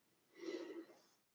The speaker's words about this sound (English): So, oh, got to sneeze. Do you want me to pause it? No.